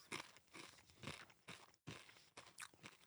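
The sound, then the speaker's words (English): Loud crunching of a crispy, spicy chipotle-flavoured snack being chewed, with repeated bursts of brittle crackle in an uneven rhythm and no talking. “Give me a little bit of crunch.”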